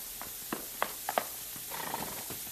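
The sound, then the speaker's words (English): A horse's hooves clip-clop in a handful of sharp, uneven strikes, followed by a brief, rough whinny, as its rider is lassoed and pulled from the horse. No one speaks. “He's pulled the rider from his horse.”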